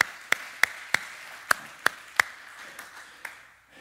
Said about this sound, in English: Come on, let's put our hands together and clap to the Lord.